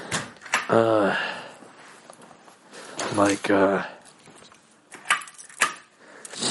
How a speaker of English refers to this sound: Locking the door because my neighbor's insane and I'm starting to think he's going to kill me.